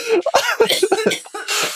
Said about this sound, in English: Let me say that again once I stop coughing.